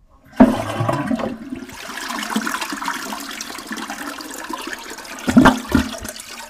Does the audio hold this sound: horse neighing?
no